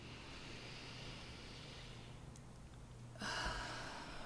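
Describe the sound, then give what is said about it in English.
A slow, deep breath: a long airy inhale, a brief pause, then a louder breathy exhale. No talking, and the whole thing stays soft. “Until next week, find a moment, and let's actually take that moment right now. And let's all take a deep breath.”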